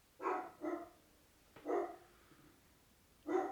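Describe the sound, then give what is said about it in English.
An upset dog barks four times in an uneven pattern, two quick barks, a pause, one more, then a last bark after a longer gap. The barks are clear, with no talking. “Your dog's upset. Very angry.”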